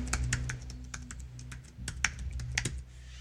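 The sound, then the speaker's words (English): Rapid, irregular clicking of keys on a computer keyboard while typing in a website address and hitting enter, a steady run of light taps with a few sharper strokes, over a low background hum and with no talking. “I've hit enter.”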